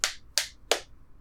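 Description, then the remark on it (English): Three quick slaps of a hand against a bare chest, evenly spaced about a third of a second apart, each a sharp, fairly quiet smack with no talking. “That was me slapping my tits.”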